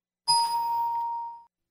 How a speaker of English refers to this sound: We need a bell.